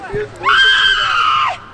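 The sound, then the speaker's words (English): A woman lets out a loud, shrill screech, rising sharply and holding for about a second before breaking off abruptly, preceded by a brief faint vocal sound. “I don't think it's appropriate to have her screeching, though.”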